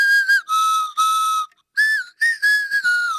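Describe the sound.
Someone whistles a short tune in a string of clear, bright phrases, sliding between steady notes with a brief pause midway. There is no talking, just the lone whistled melody.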